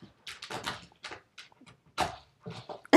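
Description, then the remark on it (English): Molly, a dog, claws and scrapes at her toy as she pushes it around the room, with irregular bursts of scratching and knocking, ending in a sharper thump. No one speaks. “And so she's pushing it around the room. So if you're clawing, that's Molly.”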